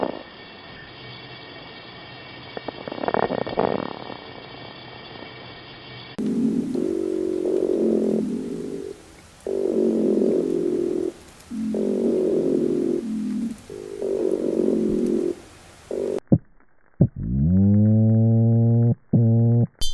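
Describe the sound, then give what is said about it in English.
A streaked gurnard's low, buzzy growl with stacked harmonic tones, followed by a chorus of freshwater drum, a bocon toadfish and a drumming red piranha: rhythmic underwater fish grunts and a rising, horn-like call. No one speaks. “Those were the sounds of a growling streaked gurnard, a chorus of freshwater drum, a bokon toadfish, and a drumming red piranha”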